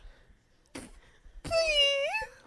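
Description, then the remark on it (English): A woman's voice imitates a fart with a short, squeaky, high-pitched tone that wavers and rises at the end, preceded by a brief breathy puff. “Oh my God, she did a squeaker.”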